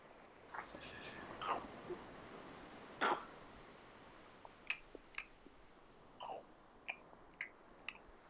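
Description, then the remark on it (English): Quiet crunching as someone bites and chews toast with ketchup on it, with sharp crackly bursts coming irregularly, some in quick pairs, over a soft hiss of background noise. “That's crunch.”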